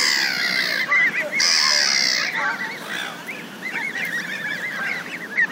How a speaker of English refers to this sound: Oh dear. Aren't they lovely? Look at those. There's clouds of dust and poo in the air. Seriously, look at all these geese, these things. Come to the camera. They're following me.